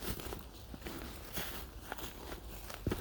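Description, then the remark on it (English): A person treads carefully: slow footsteps crunch over snowy, slippery ground, about six steps at an unhurried, uneven pace, with steady outdoor background noise and no talking. “Really slippery, so I'm treading quite carefully.”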